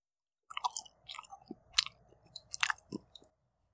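Close, wet chewing of soft raw fish, several moist squishy bites and smacks over about three seconds, quiet and intimate with no talking.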